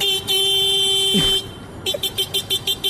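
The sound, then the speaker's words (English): A man's voice mimics a motorcycle horn: a long, steady, bright honk, then a quick run of about seven short, evenly spaced toots, convincingly horn-like in tone. “Well, it was a motorcycle horn. Oh, okay. But it was a guy impersonating it.”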